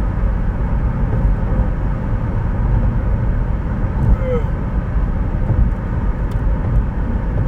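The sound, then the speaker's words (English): A steady, loud low rumble of tires and engine as a vehicle drives along a smooth paved stretch of a two-lane highway that has packed snow in places, heard from inside, constant for the whole stretch with no breaks. “Right now I got a good little stretch of pavement.”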